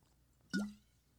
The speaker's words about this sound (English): Can you swallow in the microphone with a glass of water, please? We just need to measure this really quick for science.